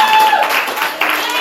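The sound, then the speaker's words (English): An audience gives a hand clap of praise during a church service, a steady, dense wash of applause that holds loud throughout, with voices calling out over it and a faint sustained tone underneath. “Come on, just give him a hand clap of praise all over this house.”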